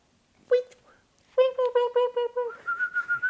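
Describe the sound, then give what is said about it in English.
A person whistles an imitation of a parakeet: a brief chirp, then a quick run of bright, pulsing chirps, ending in a higher, fluttering warble. It is fairly loud, with no talking. “You do a way better parakeet than I did.”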